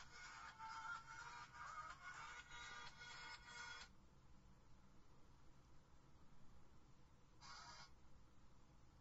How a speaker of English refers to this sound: Sorry, my phone went off, guys. Sorry.